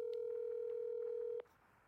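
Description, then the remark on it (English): A steady, fairly loud telephone ringing tone from an outgoing phone call holds for over a second, then cuts off abruptly, leaving a quiet line hiss. No one speaks. “I'm going to try calling her.”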